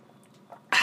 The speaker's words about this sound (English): I'm going to take a little swig of water.